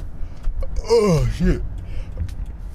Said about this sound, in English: Oh shit, I was trying to burp, but I was yawning at the same time.